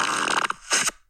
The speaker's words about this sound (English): Dude, that air raid siren fart was very, just... Like, yeah. That's the best one.